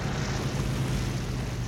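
A clipper seaplane touches down on the water at Nassau, its engine a steady low drone beneath a loud, continuous wash of rushing noise, unbroken throughout with no voices.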